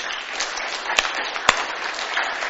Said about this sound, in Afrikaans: In Jesus naam. Kom ons klap vir die Here.